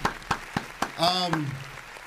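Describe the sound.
Short burst of applause for the Dallas Cowboys, the 2024 NFC East champion: around six sharp, evenly spaced claps, with a voice letting out a drawn-out, falling whoop partway through.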